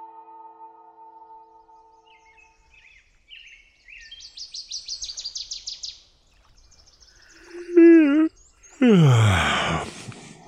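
birds singing

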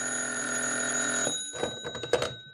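telephone ringing

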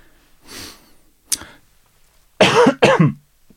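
cough

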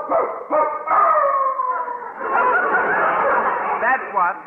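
dog howling

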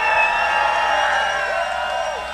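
audience cheering

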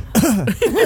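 loud cough

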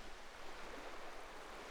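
ocean waves

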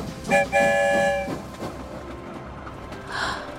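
train rolling along rails

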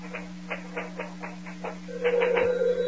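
telephone ringing

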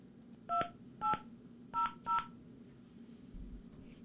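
telephone keypad dialing tones

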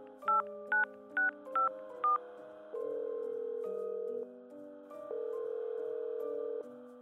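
telephone keypad dialing tones

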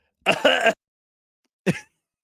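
cough

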